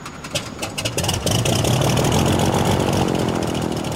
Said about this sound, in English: With an expert swing on the propeller, Tala brings the Tiger Moth's engine to life.